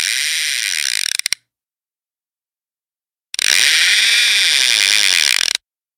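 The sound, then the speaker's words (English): A fishing reel is cast, whirring and ratcheting in two bursts: a short rapid clicking buzz, a pause of silence, then a longer, steady, high-pitched ratcheting spin that stops abruptly. No voices. “And, you know, I think it's, you know, time for us to cast that reel and see what we get from our Barrio Bros fishbowl.”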